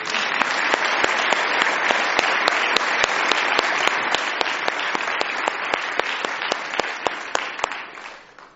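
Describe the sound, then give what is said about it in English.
An audience applauds the church's singers steadily for about eight seconds, a dense wash of clapping with sharp individual claps popping out, holding loud and even before tapering slightly at the end. “Now you can give them an applause.”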